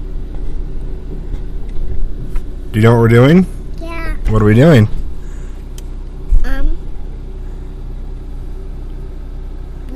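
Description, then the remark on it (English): A steady, low engine rumble fills the inside of a moving red car, constant throughout, while an adult and a child talk briefly over it as they drive to town. “We're in the red car? Yeah. Are we going somewhere?”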